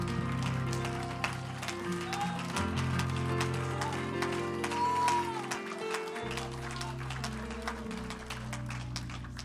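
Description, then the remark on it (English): A church audience claps steadily for the whole stretch, crisp overlapping claps forming a busy, even patter over sustained low musical tones, with no talking. “Clap your hands before your...”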